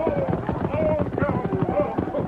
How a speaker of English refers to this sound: Tonto, Lame Bear's son and Jim, thundered close and brought their horses to a rearing halt.